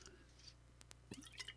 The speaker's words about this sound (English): Having some water.